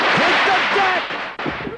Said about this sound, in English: Gina announces her arrival by tossing a pack of firecrackers in the window, and they all know it's her.